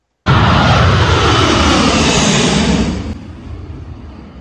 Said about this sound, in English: This viral video shows the plane taking off and somebody falling off of this.